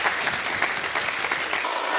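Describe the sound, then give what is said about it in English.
An audience claps steadily for a panel, a dense wash of many hands with no voices on top, holding an even loudness for a couple of seconds. “Can we have a round of applause for the amazing, amazing panel?”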